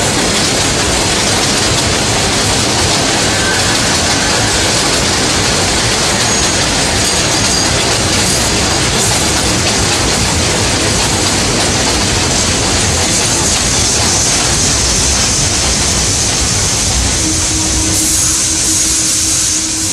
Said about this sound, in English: A Brooklyn-bound Express train. The next stop is New Lots Avenue.